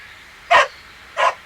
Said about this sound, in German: Der Hund, das ist doch...